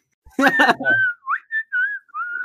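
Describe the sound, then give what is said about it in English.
A short burst of voice gives way to a string of breathy whistled notes through a gap in the teeth, four or five wavering tones with brief pauses between them. “Whistle through your gap.”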